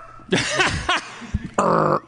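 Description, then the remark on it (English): A person imitates a dog's growling bark: a few rough, gruff vocal bursts, followed by a longer, harsh sustained growl. “I mean, you do have to know your rhyme pretty well to growl right.”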